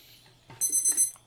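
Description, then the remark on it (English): A darkroom timer alarm goes off at the end of the fixer step in film developing, when it is time to pour out, in a quick burst of shrill, high-pitched electronic beeps, about four in rapid succession, over a low steady hum. “We have 8 seconds left, so get ready to pour out.”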